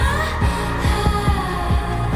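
A muffled, low heartbeat, the singer's own heartbeat sampled in a song, thumps in a steady repeating pulse beneath a sustained, droning music track, the beats soft but clearly rhythmic, with no voices.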